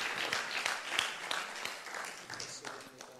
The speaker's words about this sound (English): I think we should clap for the Lord. He's building this church.